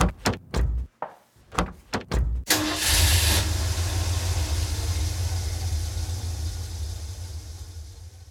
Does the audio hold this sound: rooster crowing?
no